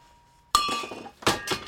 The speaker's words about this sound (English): This is the way that we bend the bells. This is a bending die right here. Put the metal in the die and we bend the bell. And boom, go. You have to have some muscles to do this.